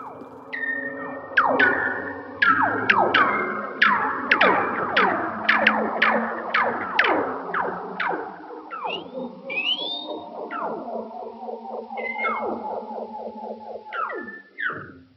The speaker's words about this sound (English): Are they really coming from seals? We are pretty sure those are the vocalizations of Weddell seals.